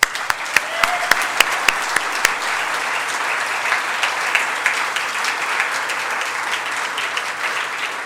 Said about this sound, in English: So I want to give all the families and the teens a round of applause in celebration for you.